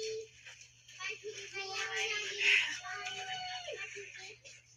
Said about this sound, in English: a baby, talking. Yeah, screaming.